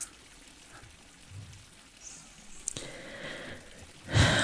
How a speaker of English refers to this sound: And there's, you can hear the faint trickling of water. And there is a statue of a little cherub with a vase and water kind of spraying out of it.